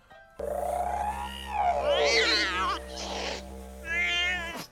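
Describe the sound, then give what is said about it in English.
Cats meow in a series of long, wavering cries, three or four calls one after another, loud, with a steady low electrical hum running underneath the whole time. “Can you hear cats?”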